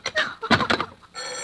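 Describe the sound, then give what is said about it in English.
An old telephone bell rings loudly in rapid, rattling bursts, then settles into a steady, shrill metallic ring at the end. “Hello, hello, stop ringing, do you hear? Answer me, who is this?”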